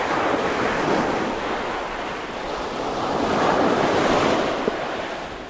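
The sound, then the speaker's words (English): Steady surf washes onto a beach by a camp on the channel across to Tiburon Island, with a constant windy rush, the roar swelling into a fuller wave break midway before easing slightly. No voices are heard. “In the morning, Ernesto comes by our camp on the beach with his boat, ready to take us across the channel to Tiburon Island.”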